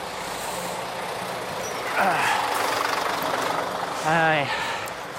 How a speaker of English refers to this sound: Skip lorry trying to do a 3-point turn in front of me onto the pavement.